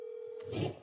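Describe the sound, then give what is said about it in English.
A steady, unbroken telephone dial tone of an outgoing call hums on its own as a host phones a listener who sent a text message, joined near the end by a brief burst of louder, rustling noise before the tone carries on. “I'm making you a phone call right now.”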